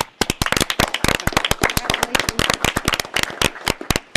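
A burst of applause from a small group of commissioners at a commission meeting, thanking an honoree for their service and dedication, sharp overlapping claps in a quick irregular rhythm that stays loud and steady throughout, with faint voices underneath.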